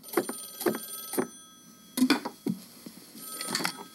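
An old-style telephone bell rings in short, rapid bursts, three quick rings followed by a pause, then more jangling rings at moderate volume with no one talking.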